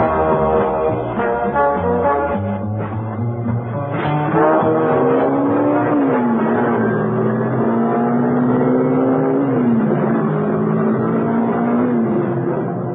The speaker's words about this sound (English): out on the open road, Mrs. Peel was able to put on some speed. There was no traffic about, luckily, and the car responded like a rocket.